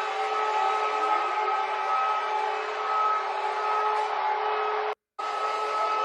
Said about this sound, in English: It's air raid sirens going off. Super important. There's a big war going on. Missile attack.